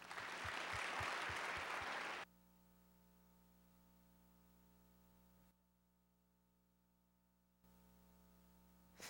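A short, loud burst of audience applause for a speaker being welcomed up, with a few distinct claps, lasts about two seconds, then cuts abruptly to a steady low electrical hum with no voices.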